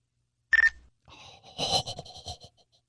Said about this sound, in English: It was like the dumbest... phone, but it had the coolest ringtone, and I was like, I kind of want that because of the sound. Nextel ringtone chirp.